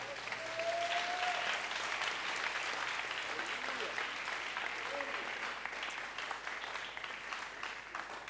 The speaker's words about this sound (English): Give the Lord a wonderful clap offering.